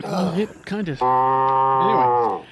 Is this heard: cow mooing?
yes